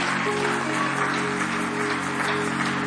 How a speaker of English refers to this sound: I want you to clap your hands and bless the Lord. What a great God that we serve.